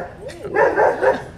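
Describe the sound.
A dog barks a couple of times in quick succession, moderately loud, with a voice faintly present in the background.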